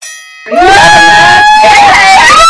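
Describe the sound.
After a brief quiet start, shrill, high-pitched screams attributed to Professor Umbridge ring out loudly, holding long wavering notes that rise and fall for about two seconds without a break.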